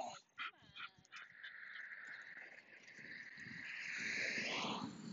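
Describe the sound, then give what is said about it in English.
A leashed dog lets out a couple of short yips, then a long, high-pitched whine that holds and climbs in pitch, fairly loud with no one talking. “So we have leashes to hold these dogs back.”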